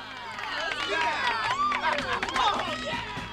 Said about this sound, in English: Big round of applause for our sponsors. Woohoo!